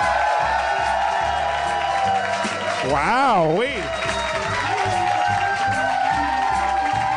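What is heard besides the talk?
audience cheering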